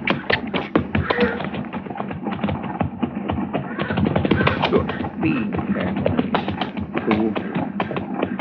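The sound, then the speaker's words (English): Horses' hooves clip-clop in a steady, continuous rhythm, moderately loud, mixed with a busy layer of background sound and some indistinct voices. “Well, let's ride down and say hello anyway.”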